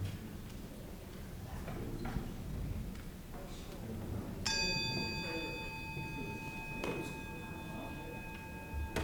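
A single bell is struck once partway through at a group gathering to mark silent time before people take turns sharing. It keeps ringing with a clear, sustained tone, its brighter overtones dying away first while the fundamental lingers softly over quiet background noise.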